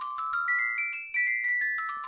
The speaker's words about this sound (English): That's a sound I have not heard in a long, long time. Little known fact, that's actually the ringtone that John David Washington gives to the phone for Elizabeth Debicki.